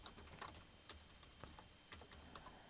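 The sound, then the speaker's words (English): Soft, irregular clicking of keys on a computer keyboard, a quick series of light, quiet taps, with no voices over it. “See, I'm typing all this as I'm talking.”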